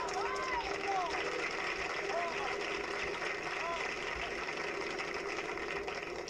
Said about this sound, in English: There we go. I got the engine going.